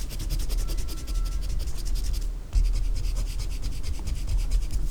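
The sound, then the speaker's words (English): Steady rubbing of an eraser across rough drawing paper in quick back-and-forth strokes to clean up smudges, a dry scratchy texture with a brief pause midway before the scrubbing resumes. No one speaks. “I've got some smudges, I think, from me, so let me clean up a little bit here.”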